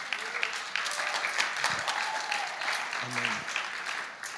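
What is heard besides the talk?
audience clapping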